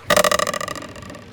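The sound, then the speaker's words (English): A single voiced, rattling burst from a person imitating the sneeze of a character whose crossbow goes off as he sneezes: loud at the start, then trembling and fading over about a second, heard on its own with no talking. “His crossbow goes off as he sneezes.”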